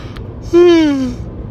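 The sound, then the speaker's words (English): A single voiced yawn with a breathy, descending tone that lasts about half a second and then trails off. Faint background noise surrounds it, and no one speaks. “Well, you can't edit out a yawn.”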